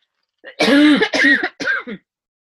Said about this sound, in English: And if you, this is the new year, I have to cough. Can you edit this out?